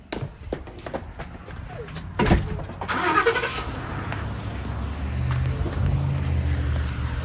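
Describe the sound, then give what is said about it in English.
Clicks and shuffling lead to a sharp door thud, then an engine turns over and settles into a steady low rumble heard from inside a truck cab. “Alright guys, so we are now in the truck”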